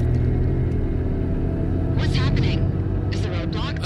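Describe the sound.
Heavy engines of convoy cars rumble steadily and loudly as the cars go into full reverse, a deep continuous drone, while indistinct voices cut in briefly twice over the noise.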